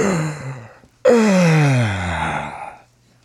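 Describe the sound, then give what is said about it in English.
A loud, drawn-out yawn right up against the microphone: a brief breathy intake, a short pause, then a long voiced groan sliding downward in pitch before trailing off into a breath. “That was a pretty exaggerated yawn.”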